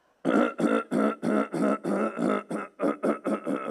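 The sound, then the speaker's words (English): A rapid, steady run of about a dozen loud, rasping throat-clearing bursts, each a short guttural rumble with a slight voiced tone, with no talking, made by someone clearing their throat before singing a Sunday school song. “I'm clearing my throat.”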